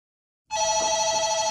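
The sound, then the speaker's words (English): A telephone starts ringing abruptly after a short silence, a steady, bright electronic trill at a constant level, with no talking over it; it is a call from the front desk. “talking for about an hour and a half when the front desk phones.”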